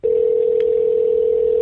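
A steady, unbroken telephone dial tone hums at a constant mid pitch, loud and even throughout, with a faint brief click partway through.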